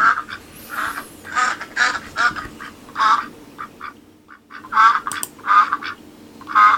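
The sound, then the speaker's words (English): A duck quacks repeatedly in loud, nasal bursts, roughly a dozen calls in an uneven rhythm with brief pauses, clear with no talking. “Insert quacking up joke here.”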